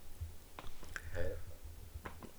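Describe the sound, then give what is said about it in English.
Someone quietly drinks water: a few soft sips and gulping swallows with small wet mouth clicks, spaced irregularly over a couple of seconds against a low background hum. “Oh, sorry, I need some water.”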